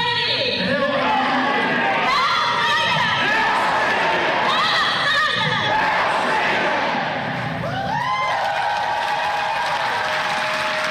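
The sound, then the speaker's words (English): A crowd at an event in Boston whoops and cheers loudly throughout as a woman tears up a Bible, high excited yells and shouts piling over one another in a dense, sustained roar of voices with no clear words. “And listen to the whooping.”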